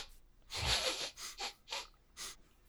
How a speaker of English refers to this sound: You hear the little rodent style sniffs in the air.